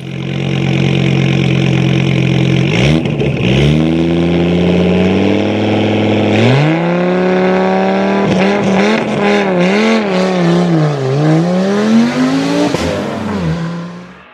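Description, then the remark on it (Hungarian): A Dink scooter engine revs up steadily, its pitch climbing in several rising surges as it accelerates, loud throughout the whole stretch with no talking. “Hát ez a robogozás egyébként csodálatos, amióta a Dink van.”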